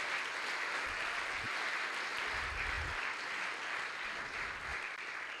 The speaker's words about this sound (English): So give our sponsors and our board members a nice round of applause.